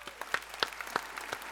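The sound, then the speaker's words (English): A small group claps together at the end of a show, sharp overlapping hand claps forming a steady, fairly quiet patter of applause with a few louder slaps standing out, and no voices. “Everybody, like we do at the end of this show, let's go ahead and clap it out.”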